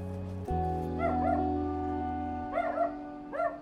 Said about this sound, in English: What's striking is the number of dogs out here. They're absolutely everywhere. Almost every house you walk by has at least one dog, if not several.